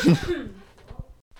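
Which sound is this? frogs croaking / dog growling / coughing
coughing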